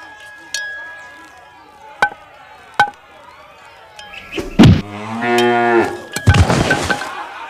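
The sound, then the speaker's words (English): A few sharp knocks ring out, then a man's voice lets out a loud, drawn-out imitation of a cow mooing, as a cow at bat in a Little League game getting hit by a pitch, followed by another burst of cluttered noise. “And now a cow at bat in the bottom of the sixth inning of a Little League game getting hit by a pitch.”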